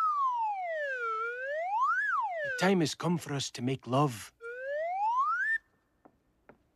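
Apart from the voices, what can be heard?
slide whistle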